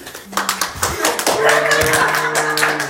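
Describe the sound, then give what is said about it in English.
A live audience breaks into loud cheering and steady, dense applause, with many hands clapping together and voices whooping over a sustained crowd roar. “I will stand against all of the cheering and go down on the record for that.”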